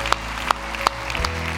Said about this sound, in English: Can I hear you tell me you're gonna take one step this week? Let me hear you. A lot of you are nervously clapping right now, and that's okay.